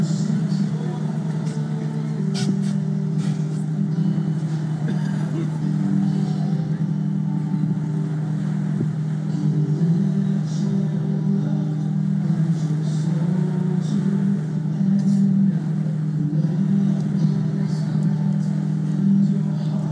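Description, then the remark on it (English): A boat engine on the Sea of Galilee drones steadily and loudly throughout, a low constant hum with rushing wind and water noise layered over it and no pauses or changes in pace. “I remember just leaning over the bow of the boat, looking at the water that Jesus literally walked on, and just embracing the silence.”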